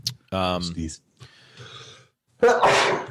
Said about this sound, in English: Gesundheit. Sorry about that.